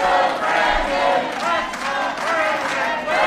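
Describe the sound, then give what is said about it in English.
A large crowd chants loudly and steadily, the many voices smeared together and slightly out of step, forming a dense, continuous roar with rising and falling vocal tones. “We're listening to the crowd.”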